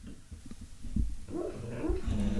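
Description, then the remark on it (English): A dog named O'Neill whimpers softly while dreaming, a few low muffled huffs giving way to a run of thin, wavering high-pitched whines that rise and fall, with no one talking. “O'Neill's having a dream again.”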